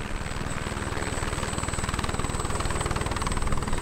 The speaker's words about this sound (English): As the resupply swings into action, helicopters carry sling loads from ship to shore.